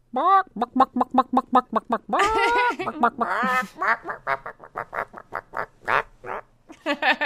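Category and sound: bird, chicken clucking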